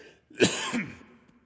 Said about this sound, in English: I have a chronic cough, not COVID-19, just so you know.